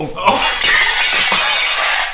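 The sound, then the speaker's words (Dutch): A rack of hanging pans, fastened with cheap IKEA bolts, comes crashing down: a sudden loud bang followed by about two seconds of harsh, bright metallic clattering and rattling that stays loud throughout. “Het ziet er niet zo stabiel uit hierboven. Hey. Hier hangen die pannen aan.”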